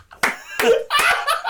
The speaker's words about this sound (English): We all just lift our shirts up. We're all slapping our tummies. Listen to the clap in my stomach.